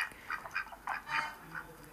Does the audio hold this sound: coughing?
no